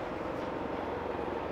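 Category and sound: vehicle, helicopter flying overhead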